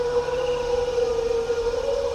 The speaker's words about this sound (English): Is it a brachiosaur or is it a compy? For comparison, brachiosaurs could grow up to 40 feet tall. If it's a big, majestic dinosaur like the brachiosaur, you give it scale, but you give it song. They're singing.